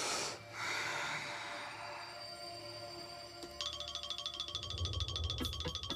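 Eerie ghost sound effects: a breathy, hissing swell with steady droning tones, turning into a rapid, rhythmic electronic chattering pulse in the second half. No one speaks.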